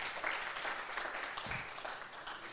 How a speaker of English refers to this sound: We can applaud. Absolutely.